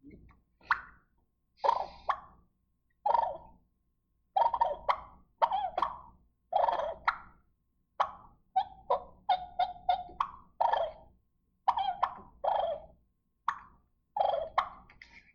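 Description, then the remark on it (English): Wild turkey clucks and purrs made on a mouth call by fluttering the tongue: a steady string of short, sharp, mid-pitched clucks, some rolling into brief fluttery purrs, loud and clear with no talking. “But what I do is I just put a call in my mouth, and I use my tongue and flutter my tongue.”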